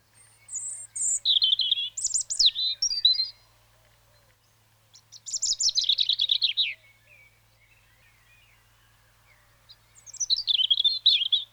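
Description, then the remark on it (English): European robin song in three clear phrases separated by pauses, each a fluid, high warbling run of thin notes and trills, fairly loud, with faint low hum underneath. “So let's have a little bit of robin song there.”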